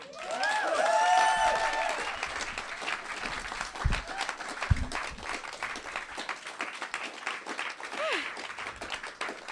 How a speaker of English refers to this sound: So she's brilliant, and we're so pleased to have her. So really big round of applause, please,